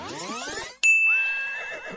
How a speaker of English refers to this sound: So Joseph gave her a lift. That's not right. There was a donkey.